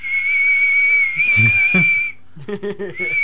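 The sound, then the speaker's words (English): A person whistles a long, steady, high note, imitating an eerie ghostly whistle. It breaks off for a moment under some murmured vocal sounds, then starts up again at the end. “You just hear this whistle like coming around the corner”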